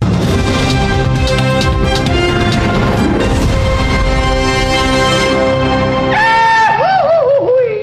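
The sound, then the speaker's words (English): A dense, busy music bed plays for several seconds, then gives way to the classic Goofy scream: a loud, warbling cartoon yell whose pitch wobbles up and down in yodel-like swoops. “The classic Goofy scream.”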